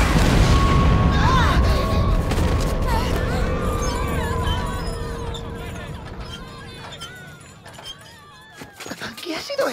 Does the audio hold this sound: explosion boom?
yes